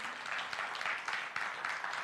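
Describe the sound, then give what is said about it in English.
A church audience claps steadily for the church's team of 10 sent to North Carolina after Hurricane Florence, a dense wash of many hands with no pauses, moderately loud and even throughout. “Let's give some real applause for that.”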